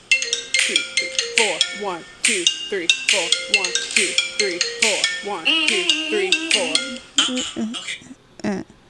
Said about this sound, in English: How do you hear the iPhone ringtone? This is the only way.